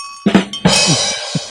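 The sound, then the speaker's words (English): A bell dings twice in quick succession, a bright metallic clang whose ringing overtones hang on for a moment before a few softer knocks close it out. “My bell is limp like that joke.”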